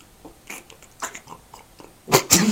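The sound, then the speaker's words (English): A dog chews and gnaws on a crinkly brown paper bag, with scattered soft rustles and crunches building to two loud crackling bursts at the end. “So my dog is chewing on it.”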